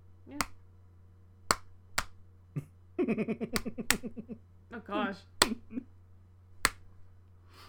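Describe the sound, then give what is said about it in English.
Sharp, isolated claps land at uneven, unpredictable intervals with no steady rhythm, an impression of the speaker's father trying to clap on beat, while a voice talks and laughs over the middle of the sequence. “Dude, do you want to hear an impression of my father clapping?”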